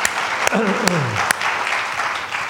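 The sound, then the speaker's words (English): A crowd claps and shouts together in praise of God during a sermon, dense steady applause with a few sharp louder claps standing out and a voice calling out in a falling tone beneath the noise. “Come on, you can give him a shout and a clap.”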